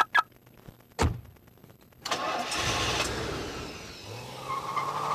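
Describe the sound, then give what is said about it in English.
After a sharp click, a car engine turns over and roars to life, revving loudly, with a higher squealing tone like skidding tires near the end. No one speaks. “That car sounds awful lot like yours.”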